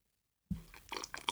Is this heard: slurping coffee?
yes